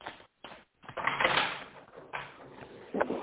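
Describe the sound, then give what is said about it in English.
A deck of tarot cards being shuffled for a card reading: a few quick papery taps, then a long crackling riffle, followed by softer rustling and a final sharp flick, with no talking. “And one more shuffle.”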